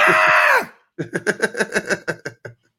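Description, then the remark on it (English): A person in a theater lets out a loud, sustained, high-pitched scream, like someone frightened, then breaks into a quick run of about ten choppy, panting vocal bursts before falling silent. “ah, you're screaming in the theater too.”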